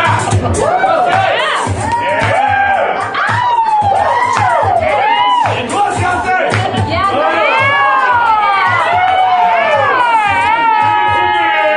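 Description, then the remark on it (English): A loud crowd cheers steadily, with many overlapping whoops and shouted voices rising and falling in pitch, a continuous dense roar of excitement throughout. “Rolling crowd tonight!”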